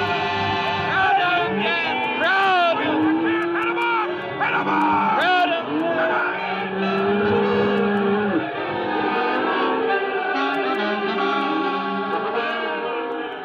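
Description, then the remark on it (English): A stampede of 10,000 head of cattle: a dense, continuous roar of thundering hooves with loud, overlapping bellows and moos from the herd, sustained for the whole stretch. “Stampede. 10,000 head of cattle gone loco.”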